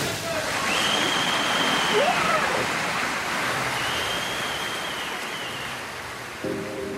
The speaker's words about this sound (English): We have a microphone at the bottom of the pool under the water. When the athlete goes under the water, we shift the perspective to just them and the underwater sound. You can hear the bubbles.